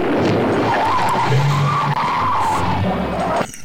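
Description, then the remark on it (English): A loud, sustained tire screech as a car skids hard for over three seconds, an emergency bat-turn sound effect, a wavering high squeal over rumbling engine noise, cutting off abruptly at the end. “Emergency bat.”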